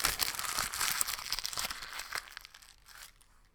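Paper is ripped and then crumpled up, a dense crackling tear giving way to sparser crinkles that gradually fade. No one speaks.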